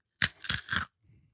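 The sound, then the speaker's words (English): Three crisp, crackly crunches in quick succession as someone bites into a crunchy, pizza-smelling snack, followed by a faint low chewing rustle. No talking. “Okay, I'll try it.”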